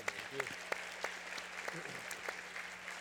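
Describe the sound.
An audience applauds, a steady patter of many hands clapping at once for a few seconds, with a handful of sharper, louder claps standing out over a faint murmur of voices.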